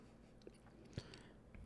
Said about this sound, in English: Like, or maybe I shouldn't chew on the mic, but like, nah, I'm gonna keep eating my fucking candies on here. They're good, you know.